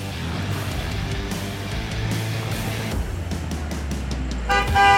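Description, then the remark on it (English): Steady traffic rumbles past, then a car horn blares loudly near the end in a short honk over the road noise, as passing drivers honk in support of a roadside protest. No one speaks. “We've got people honking, driving by, showing their support for the community.”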